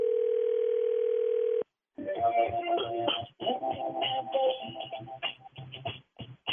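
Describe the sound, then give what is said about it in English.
A steady telephone dial tone hums for about a second and a half, cuts off, then a busy run of short electronic tones follows as a number is dialed for a prank phone call. No one speaks. “next, Nephew Tommy's prank phone call.”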